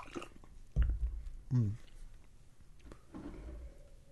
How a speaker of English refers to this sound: That one sip, where in the late aftertaste, the pecans really shine through. That was neat.